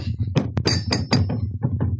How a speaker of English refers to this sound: I'm, in fact, hitting the keyboard and the desk near the keyboard. And I'm not getting anything to activate.